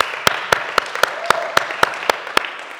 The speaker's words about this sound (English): And as any good quiz show, I have my two assistants to help me. Very beautiful. A round of applause for the assistants.